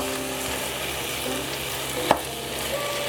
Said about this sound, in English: I'm gonna increase the heat a little bit now that my meat's in there. So from here, keep cooking, stirring occasionally until the meat is cooked through.